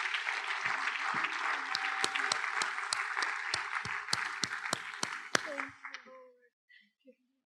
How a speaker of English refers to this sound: you all may be seated as we clap unto the Lord for his word.